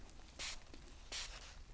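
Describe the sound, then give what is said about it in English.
Two short, hissy bursts from a spray bottle, about half a second apart, each a bright airy spritz of numbing solution onto the eyebrows, with quiet stillness between them and no voices. “And at this point, I'm going to spray this numbing solution to make sure that you don't feel any pain at all from now on as well.”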